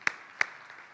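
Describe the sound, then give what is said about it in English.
Two sharp, loud claps about a third of a second apart ring out over a faint, steady wash of scattered clapping from a group, with no one speaking. “We ought to give God a clap on that.”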